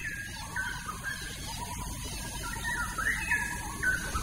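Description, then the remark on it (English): A straw-headed bulbul calls in bright, liquid, short warbling bursts above a steady wash of cricket and insect buzzing and low rumble in the morning, growing a little louder toward the end. “Straw-headed bobo was calling again.”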